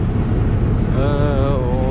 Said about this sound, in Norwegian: Nå vi rett over Island, og vi har blitt bedt om å ta på setebeltet på grunn av kraftig turbulens.